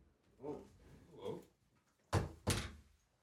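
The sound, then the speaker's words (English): Two sharp, solid knocks on a wooden door at a recording studio in quick succession, fairly loud, following a few moments of muffled voices in the background. “Someone's knocking on the door.”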